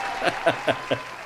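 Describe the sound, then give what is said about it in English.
A short applause sound effect for the winner of a Name That Game round: four crisp, evenly spaced claps in a steady rhythm over a faint background hiss, with no voices. “Here is your round of applause for winning Name That Game.”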